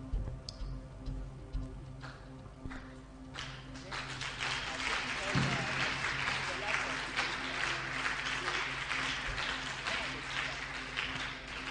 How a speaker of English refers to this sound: Oh, your hand clap doesn't sound encouraging.